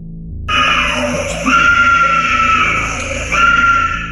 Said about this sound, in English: Involuntarily, she started to scream in the courtroom. Here is a little clip of that.